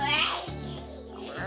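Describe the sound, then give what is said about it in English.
A voice imitates the grinding sound of an oven with a strained, raspy drone that holds steady for about a second and a half, fairly loud, with a whiny, almost yowling edge. “Then a grinding sound.”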